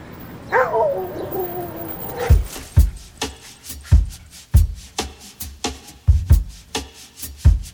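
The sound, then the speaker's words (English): Keys jangle and clatter in a series of irregular clinks and knocks, about a dozen over several seconds, as someone tries to get their keys, after a brief high whining call at the start. “I'm just trying to get my keys.”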